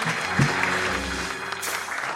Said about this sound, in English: She's a woman of many talents. So I'd like to give her a warm round of applause.